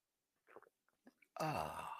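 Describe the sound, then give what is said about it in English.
A few faint, brief mouth and cup noises, then a loud slurping sip of coffee from a mug that carries on steadily to the end, with no talking. “It's called the simultaneous sip.”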